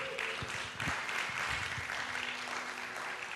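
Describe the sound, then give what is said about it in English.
A church audience applauds steadily, a dense wash of many hands clapping at an even, fairly loud level throughout, with a few sharper claps and low thumps standing out. “Can you give him a good round of applause?”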